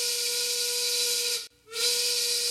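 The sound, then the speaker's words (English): A loud, breathy train whistle sounds in two blasts: a long steady tone, a brief break, then a shorter second blast, with a bright hissy edge over a steady pitched note. “This is definitely L-Train. Woo woo.”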